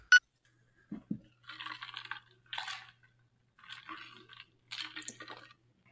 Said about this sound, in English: I hear you heard it. I'm trying to be quiet. I hear that ice clinking.